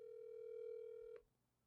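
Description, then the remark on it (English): A single steady electronic phone ringing tone sounds for just over a second, then cuts off, leaving faint background hiss. Nobody speaks. “And then I actually don't have time to make calls.”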